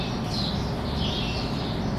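A dense chorus of many birds chirping, a steady, blended twittering over a constant low background rumble, with no one speaking.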